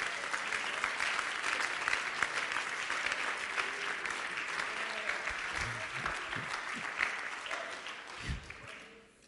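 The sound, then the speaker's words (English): An audience claps hands in worship of God in sustained, dense applause, many overlapping claps forming a steady wash of sound that stays loud throughout before tapering off at the end, with a few low murmurs underneath. “Clap your hands and worship God.”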